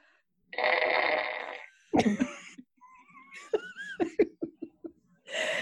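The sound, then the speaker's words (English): A loud fart sound effect: a long raspy blast, then a wobbly squeak and a quick string of sputtering pops before another noisy burst at the end, without talking. “And a complete with sound effect.”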